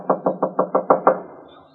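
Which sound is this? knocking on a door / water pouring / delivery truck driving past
knocking on a door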